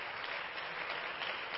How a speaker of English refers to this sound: Again, to our guests that are here, we're honored that each and every one of you has come to be with us in the house of the Lord. Why don't our home folks give our guests a good hand clap today?